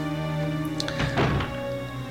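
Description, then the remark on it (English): A door in a zombie video game opens as the player goes in, with a single muffled thunk and a brief creaking swell over a steady, droning musical background, then the drone carries on alone. “There's a door, there's two doors here, so let's go in this door that I'm closest to, because it makes sense to me, basically.”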